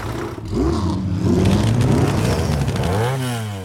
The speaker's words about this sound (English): And he finally follows along suit with the rest of his crowd, and he gets into his truck and he leaves.